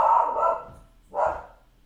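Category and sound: animal, dog barking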